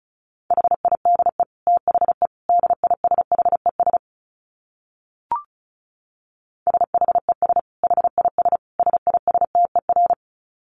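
Rapid Morse code at 35 words per minute, sent as a single steady mid-pitched beep, keyed in fast short and long pulses in two runs, separated by a few seconds of silence broken by one brief click.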